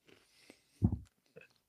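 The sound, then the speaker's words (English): Chewing of a Take 5 candy bar: one loud, crunchy bite in the middle, with a few softer mouth clicks and smacks before and after. No one speaks. “as I'm eating a take five.”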